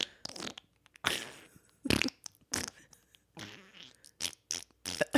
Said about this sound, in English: Nice, dude. Nice wet farts, dude.